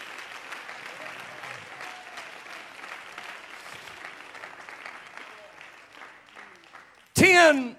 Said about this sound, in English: Well, won't you clap your hands again unto the Lord?